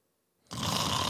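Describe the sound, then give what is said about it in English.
A voice imitates a man's loud snore in a quiet bus waiting area: near-silence, then a sudden harsh, rattling burst of throaty sound that holds steadily loud for about half a second. “He's fucking snoring.”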